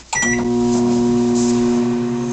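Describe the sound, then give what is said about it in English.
A quick pair of electronic beeps, then a steady humming drone of a microwave oven running continuously, with no voices. “That's why everybody's house is burning down, because they're putting their mask in a microwave.”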